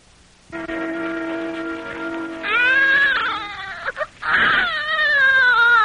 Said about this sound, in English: The most miraculous sound in the world. The cry of a newborn child. A lusty cry signifying health.